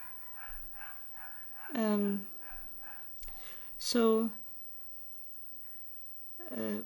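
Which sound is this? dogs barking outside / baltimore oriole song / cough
dogs barking outside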